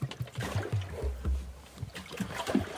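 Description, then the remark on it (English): A boat holds position on power anchor, its motor a low droning rumble mixed with uneven water sloshing and slapping against the hull, fairly loud throughout, with no talking. “You may be able to tell, but I'm still on power anchor.”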